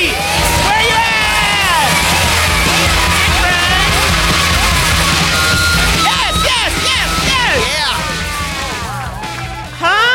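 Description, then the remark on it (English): A loud audience claps and cheers without letup as guests are brought out, with whoops and yells rising and falling over the steady roar of applause for about ten seconds. “You guys, give it up, okay? Start clapping.”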